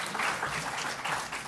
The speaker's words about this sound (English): So a round of applause for the latest Scottish citizen.